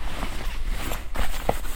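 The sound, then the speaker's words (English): Rustling inside a pocket while trying to get glasses out: a scattering of soft, brief crinkles and small clicks over a steady low rumble, with no one speaking. “Just rustling in my pocket to try and... Get my glasses up.”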